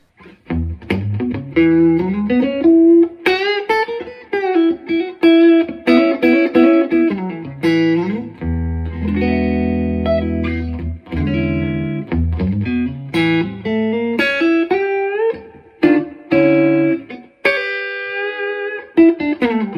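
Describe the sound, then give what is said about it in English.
A warm electric guitar with an APC Adder neck pickup plays through an amp with reverb and a touch of compression, mixing sustained chords and melodic single-note lines at a steady moderate volume, alone, with no talking. “So I'm gonna start with the APC adder pickup, and I'm just using a smidge of compression, and otherwise you're just hearing the amp and the reverb on that.”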